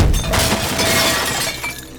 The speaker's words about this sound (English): He lashed out at some nearby pots, smashing them into pieces with a single violent gesture. Shards of ceramic scattered across the floor.